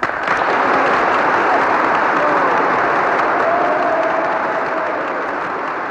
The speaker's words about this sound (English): And with those final words, the members of Congress roared with approval, as you're hearing. It went on for over a minute.